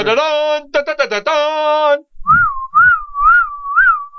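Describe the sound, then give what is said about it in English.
A person whistles a call to Rambo from an open car door, stopped on a street median: about four short, rising-and-falling whistles in a steady rhythm, loud, following a burst of harsh, buzzy vocal sounds. “I just open the door and I start whistling like.”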